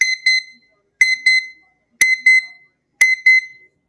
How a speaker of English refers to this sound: That's the sound that the timer makes when it goes off. And that just tells me, hey, good job. You sat down, done the 25 minutes of work, and can move on.